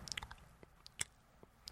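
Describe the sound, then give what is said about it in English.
Quiet wet mouth noises: a quick burst of squishy smacks and sucking clicks, then a few scattered pops, as a voice imitates chewing or sucking. No talking. “You're sucking or chewing?”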